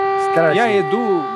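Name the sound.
air raid siren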